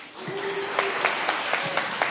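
An audience at a national challenge event claps in a steady, dense round of applause, a continuous wash of many hands with sharper individual claps popping out at irregular moments, moderately loud throughout.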